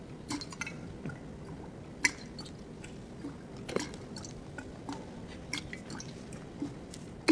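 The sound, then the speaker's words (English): A rhythmic water dripper, an automated sound installation in an audiovisual memorial production, drips and splashes in a steady, loose rhythm over a soft liquid wash, each drop landing as a sharp plink. No one speaks. “A rhythmic water dripper.”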